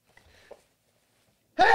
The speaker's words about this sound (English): Because right now, I have to sneeze.